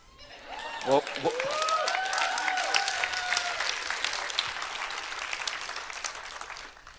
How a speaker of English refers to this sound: But what I said was, give the Lord a clap of praise.